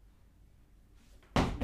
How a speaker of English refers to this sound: I'm going to close the door.